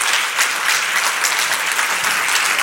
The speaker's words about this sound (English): Can we give a round of applause for these three folks here?